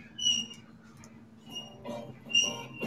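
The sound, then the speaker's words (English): A bird squeaks in the background, giving a few short, high-pitched chirps at intervals over a low, murmuring noise. The squeaks are fairly faint. “I'm going to throw something familiar at people that doesn't have a squeaking bird in the background.”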